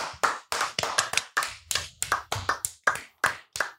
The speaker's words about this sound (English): The Kansas City Chiefs are fucked, so I think we should give them a round of applause.